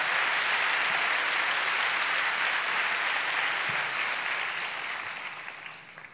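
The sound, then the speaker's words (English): A church audience claps loudly in praise of God in a dense, steady wash of applause that holds for several seconds, then gradually thins and fades toward the end. “Oh, come on, give God a big clap.”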